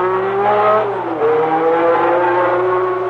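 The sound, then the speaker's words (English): A powerful high-performance car engine revs loudly and continuously, its pitch climbing and dipping as the throttle opens and eases, with no voices. “DX Super Sport is for guys who really drive their cars, high-performance cars, because Super Sport Motor Oil was developed to meet the severest engine demands.”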